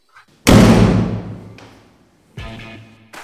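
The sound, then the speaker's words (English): A heavy, loud bang on a door rings out and decays slowly, followed by two quieter thuds a couple of seconds apart, with no voices. “And when the music switches off, there is a loud bang at the door.”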